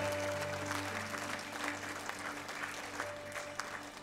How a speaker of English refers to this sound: Would you clap your hands one more time and thank the Lord?